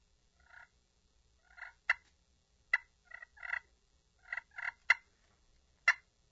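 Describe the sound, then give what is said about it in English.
Clear turkey call sounds with no talking: soft rolling purrs broken up by several sharp, sudden clucks, spaced irregularly over a few seconds. “doing the purring and clucking right here”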